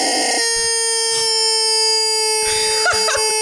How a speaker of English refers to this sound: Rubber chicken, do the outro.